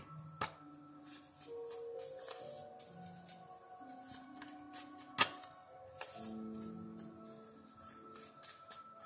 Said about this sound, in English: I'm going to go ahead and shuffle the jar of hearts real quick.